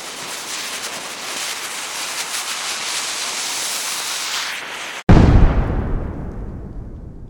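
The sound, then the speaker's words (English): A steady, rushing hiss builds for several seconds, then cuts off abruptly before a single loud, deep explosion booms and rumbles away into a fading low tail. “From the smallest firework to a volcanic eruption, there's just something about things that go boom that people have always found both fascinating and terrifying.”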